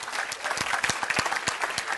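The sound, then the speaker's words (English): An audience claps their hands in a steady, dense wash of applause, with sharper individual claps popping out at irregular moments over two seconds. “I'm waiting while you clap your hands right there.”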